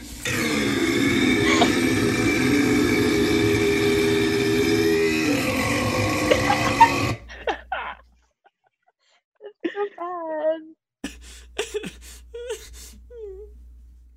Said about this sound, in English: No, burp sound effect. No, we're not doing e-girls. We're gonna do the biggest burp.